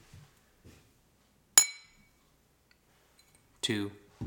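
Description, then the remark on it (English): A single bright clink of beer glasses or cans tapped together in a toast, sharp and ringing briefly, with faint low murmurs before it and a short voiced sound afterward. “And I just wanted to say cheers. Mm. Cheers to you.”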